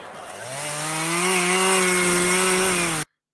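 A chainsaw revs up and cuts steadily through wood for about three seconds, doing chainsaw joinery, loud, with a strong droning whine that rises slightly before stopping abruptly.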